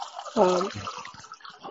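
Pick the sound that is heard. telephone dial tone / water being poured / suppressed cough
water being poured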